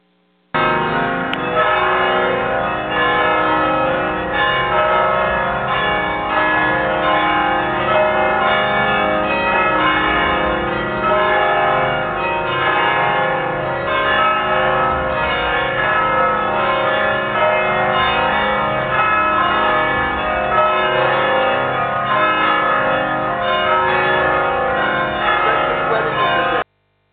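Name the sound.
wedding church bells ringing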